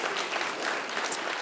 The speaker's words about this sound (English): Do we have anyone here this morning from the greatest generation? Yes, give them a big round of applause.